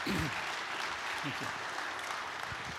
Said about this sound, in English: And as we set up for that, would you just give them one more round of applause? We really appreciate you guys being here today.